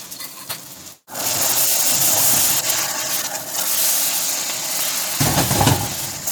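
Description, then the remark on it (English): Stir fry sauce containing honey hitting a hot pan of frozen vegetables gives a loud, steady steaming sizzle that starts after a brief pause and holds for several seconds, with faint scraping of stirring underneath. “And when you add your stir fry sauce, it's going to steam.”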